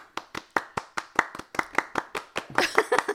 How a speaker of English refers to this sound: He's clapping with one hand. Nice. That was moist clapping.